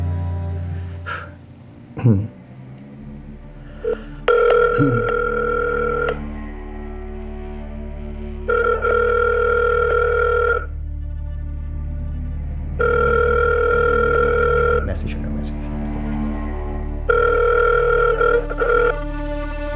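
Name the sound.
telephone call ringing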